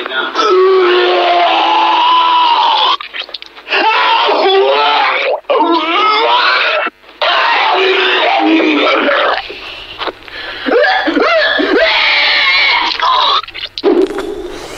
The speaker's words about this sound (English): the social media trend challenges participants to scream as loud as they can while letting loose with the vomit